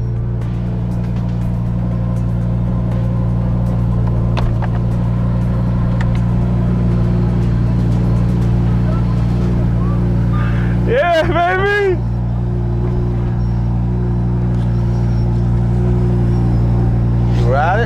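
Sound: sports car engine running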